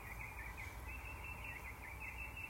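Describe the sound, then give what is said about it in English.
A steady chorus of birdsong at 6:18 a.m. on a Saturday morning in February, many overlapping chirps and trills blending into a continuous wash, with no voices and almost no traffic. “Lots and lots of birdsong.”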